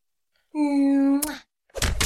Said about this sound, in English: Good, but kind of, you press the kiss sound followed by the punching noise. I thought that was cheering. No. It's a fist. Oh. It's meant to be a fist.